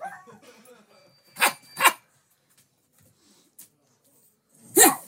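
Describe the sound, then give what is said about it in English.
A man imitates a dog, giving two loud, sharp barks in quick succession and then a third after a pause, with faint murmured talk just before. “You think the family asked him to bark because he just says too much racist shit all the time?”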